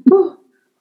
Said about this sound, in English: I'm going to sneeze.